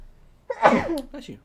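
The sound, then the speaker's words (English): A single loud sneeze bursts out after a brief quiet moment, followed by a short breathy tail and a soft vocal sound. “Bless you.”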